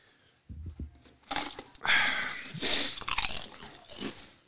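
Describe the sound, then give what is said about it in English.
Loud crunching of a crisp Pringles Wavy Fire Roasted Jalapeno potato chip, a few sharp crackling bites followed by brittle chewing, with no talking. “Just crunched half that chip and half of it made it, what is this, Fire Roasted Jalapeno?”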